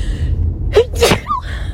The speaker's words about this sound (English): Oof, that was a good sneeze.